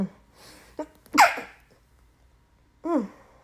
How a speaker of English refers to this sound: I have to sneeze. Hold on 1 second.